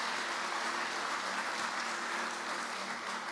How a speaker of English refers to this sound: Praise God. Praise God. Give the Lord a clap offering for that teaching.